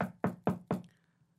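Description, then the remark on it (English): Four firm knocks on a wooden house door in a quick, even rhythm, fairly loud, followed by a brief quiet tail with no voices. “Can you open the door?”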